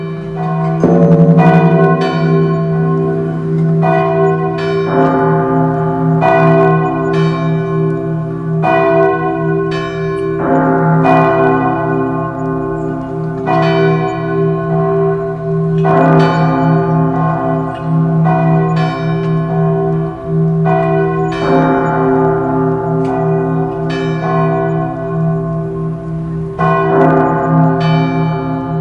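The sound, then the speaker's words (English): Church bells ring out in a steady, overlapping peal, rich and resonant with long ringing tones, from the main bell tower of the Keep of the King followed by bells from all the churches within Everil, several chiming together continuously and fairly loud, with no voices. “You all hear the chiming of bells coming from the main bell tower of the Keep of the King, followed by bells from all of the churches within Everil.”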